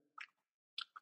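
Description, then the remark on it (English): Crunchy porotón chips being chewed: a few sharp, crackly bites in quick bursts, with a short pause between the first crunch and the next two, no talking. “It's crunchy. These are chips.”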